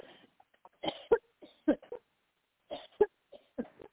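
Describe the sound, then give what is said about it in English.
A person coughs in short, harsh bursts with strained, gagging breaths between them, in two clusters separated by a brief pause. “I'm literally coughing and choking.”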